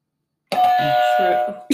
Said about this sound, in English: Sorry, I'm not good with the buzzer.